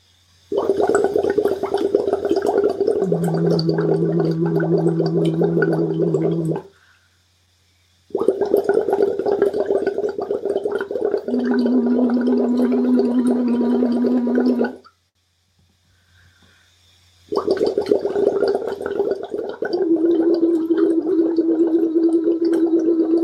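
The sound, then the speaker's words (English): Three steady bursts of bubbling as air is blown through a straw into water in a voice exercise, separated by short silences; partway through each burst a low hummed tone joins the continuous bubbling, changing from unvoiced breath to voiced humming. “make sure the bubbles stay constant when you change from unvoiced to voiced and use this rhythm to practice”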